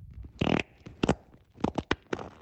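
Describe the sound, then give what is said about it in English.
A wet, sputtering recorded fart plays out in several loud bursts: a long squelchy blast, then a string of shorter spluttering pops, with nothing else around it. “That sounded excrementy. Yeah, that sounded like it broke the solid barrier.”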